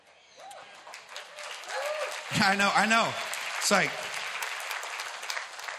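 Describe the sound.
An audience claps steadily through the whole stretch during a sermon, a dense wash of hand claps while a man's voice speaks loudly over it.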